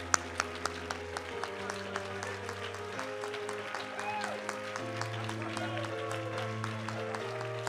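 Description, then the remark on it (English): An audience claps hands after a prayer in a steady, rhythmic beat, the many claps blending into a lively pulse over sustained keyboard chords. “Come on, if you really believe that, would you clap your hands?”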